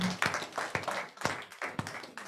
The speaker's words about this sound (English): Clap for the Lord Jesus. Amen.